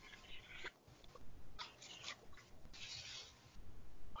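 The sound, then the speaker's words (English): A Dell Publishing paperback book, printed in February 1978, is opened and its pages handled, producing several soft rustling, crinkling bursts over a few seconds with brief pauses between them and no talking. “It was printed in February 1978. Dell Publishing. Let's open it up here.”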